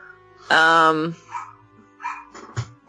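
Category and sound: animal, neighbor's dog barking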